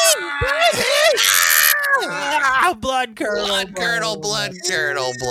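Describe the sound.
A loud, drawn-out scream from several voices at once, shrill and strained for a couple of seconds, then breaking off into choppy talking and laughter-like chatter.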